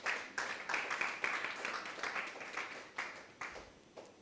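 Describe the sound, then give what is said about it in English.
An audience claps together for about four seconds, a dense, fairly soft patter of many hands that swells in waves and starts to thin toward the end, with no one speaking. “You can clap.”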